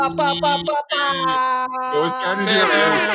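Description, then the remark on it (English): A loud, brassy air horn sound effect: several quick, blaring blasts, then long sustained honks with rich buzzing harmonics that waver in pitch near the end. “Let's get the air horn.”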